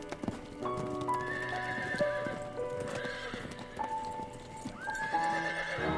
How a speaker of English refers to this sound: The horses came to an abrupt stop halfway down the drive.